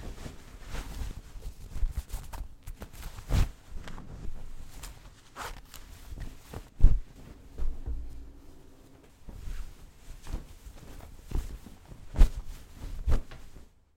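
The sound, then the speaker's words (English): Heavy stomping footsteps as she thuds down a staircase in an uneven rhythm, a handful of sharp, loud impacts standing out over softer shuffling and rustling, with no one speaking. “Hear that stomping down the stairs?”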